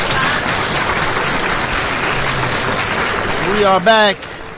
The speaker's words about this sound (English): Round of applause.